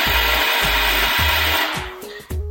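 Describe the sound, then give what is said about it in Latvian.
An electric coffee grinder grinds coffee beans for making coffee. It whirs loudly with a harsh, gritty roar and rhythmic low thumps, then winds down into a lower hum with a few clicks near the end. “Es tagad taisu kafiju. Šis ir malšanas process.”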